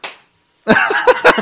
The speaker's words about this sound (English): Oh, single clap. Oh, one clap.